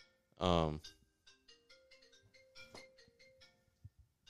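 A mobile phone ringtone plays a short electronic melody of steady, bright tones, fairly faint, after a brief loud burst of sound at the start.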